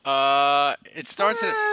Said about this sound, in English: That's a $3,000 cat, Andrew. Maybe not. It's a Bengal cat.